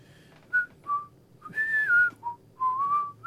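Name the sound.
person whistling a tune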